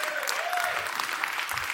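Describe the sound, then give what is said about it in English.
A crowd claps steadily, a dense, continuous patter of many hands with no breaks, lasting under two seconds at a fairly even level. “And if you're not clapping, you're giving it away.”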